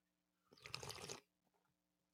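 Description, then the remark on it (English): A single short slurping sip of regular coffee with vanilla-flavoured Silk almond milk creamer, a soft airy gulp lasting under a second against a quiet background hum, with no talking. “So, as I like to say, if you have your coffee mugs, your travel mugs, your sippy cups, your doggy bowls, if you have a beer hat and you want to drink it like that, then go ahead and do so and join me in a sip of cafecito.”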